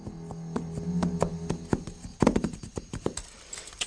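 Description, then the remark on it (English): Muffled horse hoofbeats thud in an uneven, plodding rhythm, mixed with low creaking of saddle leather. The steps are moderately loud and irregular, with no voices. “Sitting up, he strained his ears to hear, and it came again, the muffled footfalls of a horse and a creak of saddle leather.”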